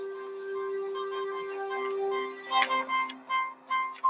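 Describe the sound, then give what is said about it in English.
A portable typewriter clacks in short, irregular bursts of keystrokes, moderately loud, following a few seconds of a steady, low humming drone; President Woodrow Wilson typing a message on the south veranda of the White House in the early morning after the night of March 31st. “On the night of March 31st, Woodrow Wilson got out of bed and took his portable typewriter to the south veranda of the White House.”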